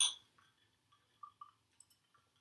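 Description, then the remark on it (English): Two glasses of gin and tonic clink together in a toast, a bright ringing tap followed by a few lighter clinks and soft rattles, fairly quiet, with no talking. “And today's drink of choice will be two glasses of gin and tonic. Mm-hmm. So, cheers.”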